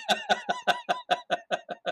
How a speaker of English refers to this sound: Freaking duck in here.